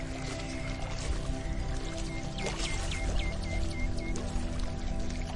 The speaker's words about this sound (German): Etwas weiter weg siehst du einen Wasserfall, der an einem Felsen plätschert.